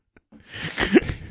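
burp

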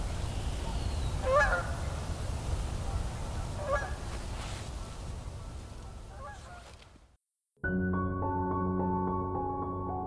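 canada geese honking

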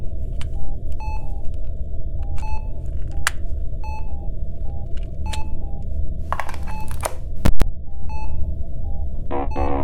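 electronic beeps

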